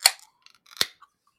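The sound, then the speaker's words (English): A can of Hefedub, a Hefeweizen beer, is cracked open: a sharp metallic snap, a brief fizzing hiss, then a second crisp crack, with no talking. “But let's crack this first in 3, 2, 1, crack.”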